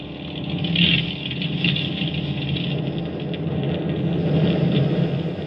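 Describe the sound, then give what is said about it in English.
Fighter plane engines drone steadily in flight, a dense continuous rumble with a faint rattle, holding an even level throughout with no voices. “Suddenly, there was nothing but the sound of our own engines.”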